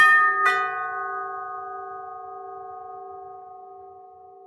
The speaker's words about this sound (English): someone pressed the doorbell.